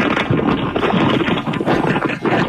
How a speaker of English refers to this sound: That's what a box full of rolling paper sounds like, baby boo.